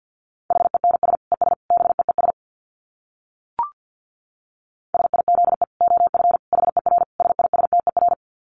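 Fast Morse code beeps at 50 words per minute on a single steady mid-pitched tone, rapid dits and dahs in two bursts separated by a short pause with a brief click, with no voices.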